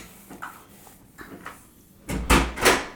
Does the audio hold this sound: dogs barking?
no